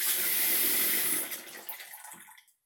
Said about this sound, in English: But before that, I need to fill up my bowl with water.